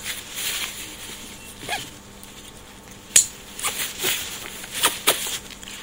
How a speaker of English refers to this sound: Still a lot of room in this pack. Put the lid over it.